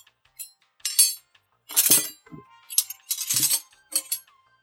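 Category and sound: household object, silverware clinking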